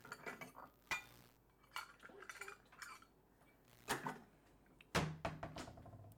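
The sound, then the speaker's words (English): Metal cutlery clinks and rattles as utensils are sorted through to fetch a steak knife, with several sharp, bright clinks spaced out and a louder clatter near the end. No one speaks. “While she's doing that, Kid One, can you go over and get me a knife? Yeah. What kind of knife? Steak knife.”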